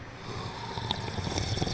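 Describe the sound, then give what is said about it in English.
Several people slurp and sip hot coffee at once, together on a count of three, a rough, breathy run of sucking and snuffling noises with a few brief sharper slurps, with no talking. “Let's all take a sip together.”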